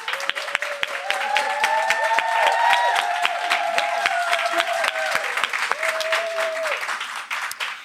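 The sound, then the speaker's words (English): A live studio audience at the Sew Black space at QuiltCon in Atlanta, Georgia, in 2023 breaks into sustained applause for the keynote speaker, dense rapid clapping with scattered whoops and cheers rising above it, steady and fairly loud across the whole stretch. “Let's give it up. Let's get some applause.”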